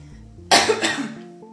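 cough

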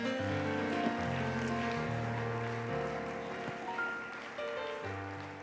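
audience clapping hands

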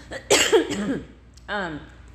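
cough

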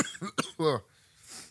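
cough into a microphone

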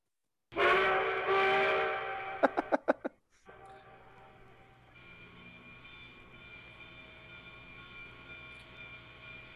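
train sounds

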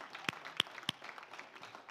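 audience clapping hands

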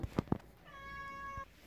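cat meowing

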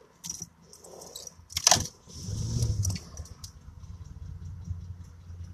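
car keys jangling

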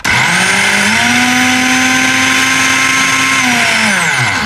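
kitchen blender running

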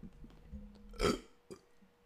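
burp

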